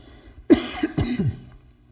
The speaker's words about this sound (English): I got a cough wanting to come up. I'm just going to get it out of the way.